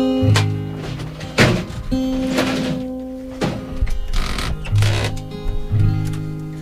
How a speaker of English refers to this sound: What do you got there? Oh, a typewriter. Sweet.